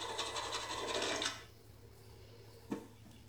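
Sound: sawing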